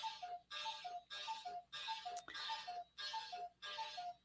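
A clock, running about five minutes off, chimes in a steady run of bright, bell-like strikes, about two per second, each ringing briefly before the next. It is clear, with no talking.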